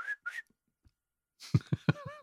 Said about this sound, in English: That is the 17th century traditional Japanese song of a shepherd. Ah, whistling song. Great. An actual shepherd song, clearly not recorded back then, more recently, but still quite a long time ago from the sound of it.